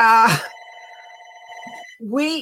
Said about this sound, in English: excuse me, guys, that's the house phone. Sorry about that.